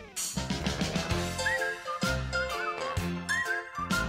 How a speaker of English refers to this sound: This is the theme to Gary's show. The opening theme to Gary's show. This is the music that you hear as you watch the credits. We're almost to the part of where I start to whistle.